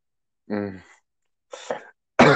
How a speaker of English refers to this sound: Excuse me. Sorry about that. I was just so excited. Couldn't control my cough.